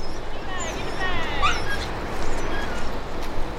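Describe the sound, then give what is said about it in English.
A dog hunting rats whimpers in a few thin, high-pitched whines and short yips over a constant rough background noise with some muffled human activity. “This is where the human element comes in, because even the most experienced dogs need some help sometimes.”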